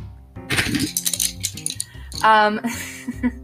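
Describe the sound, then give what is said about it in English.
Colored pencils are rustled together, clattering and clinking in bursts of light rattling, heard over a steady, voice-like tonal sound underneath. “an ASMR experience where I rustle colored pencils together for an hour and a half.”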